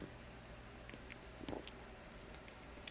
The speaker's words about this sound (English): Sorry, take a sip of water there.